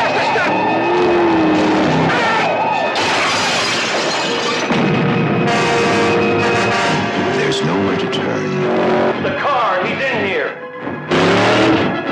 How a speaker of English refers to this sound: I think I hear the engine of that car. It's around here somewhere.